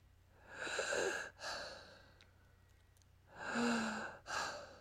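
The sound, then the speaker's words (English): A voice imitates heavy, raspy breathing heard at night with the lights off: two long, loud breaths, each a drawn-out airy rush followed by a shorter one, with a quiet pause between them. “And all of a sudden, with all the lights off, I start hearing this breathing and I'm going to do a replication of it.”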